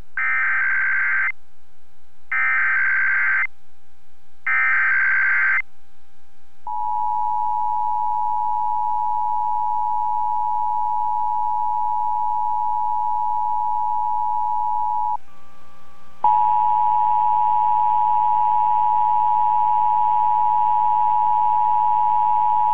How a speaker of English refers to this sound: The following tones are part of the emergency alert system.